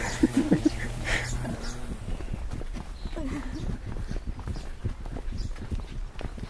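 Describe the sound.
Horse hooves clip-clop at an unhurried walking pace, steady throughout, with a voice briefly sounding early on and faint outdoor background noise.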